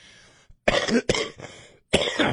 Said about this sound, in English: I got to hit the cough button next time. Got a Kleenex? I think I got some on the mic. I'm kidding.